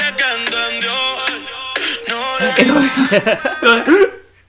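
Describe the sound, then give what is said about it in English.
A song with sustained synth-like tones, then a male vocal broken into short, choppy gasps and catches that sound like hiccuping breaths between sung notes, loud. “sounds like he has a really bad case of the hiccups.”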